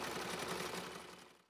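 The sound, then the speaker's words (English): A sewing machine motor whirs, its needle clattering in a fast, steady mechanical rhythm before the sound trails off and fades out at the end. “Even without seeing her grandmother at work, The hum of the motor assured her that she was safe and that her grandmother loved her.”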